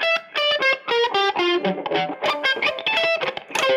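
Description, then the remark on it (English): Electric guitar noodles freely through distortion and effects, a quick run of bright, sustained notes with rich harmonics, bending and shifting in pitch, loud and steady with no voices. “So if you want to noodle a little bit while I set up the timer.”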